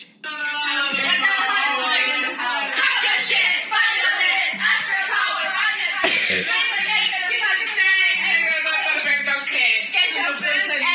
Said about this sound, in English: I just thought I'd get my phone out and play you one of the videos from my birthday party. I obviously can't show you it because it is full of ratchet hoes. But please fucking listen to this